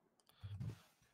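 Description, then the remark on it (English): A few faint, quick clicks of keys being typed on a computer keyboard, quiet, with a soft low thump underneath and no voices. “Oh, typing is interesting at this angle.”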